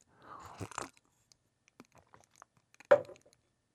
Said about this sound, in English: Take another sip of coffee.